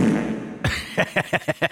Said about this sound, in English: I love the new soundboard. Just so everybody's aware, I've got this. This is fart one.